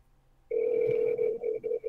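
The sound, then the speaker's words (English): A steady electronic telephone ringback tone of an outgoing call, with the phone held up to the microphone, starts abruptly and holds, then breaks into short pulsed bursts near the end, clear and prominent with no talking over it. “We're here live calling.”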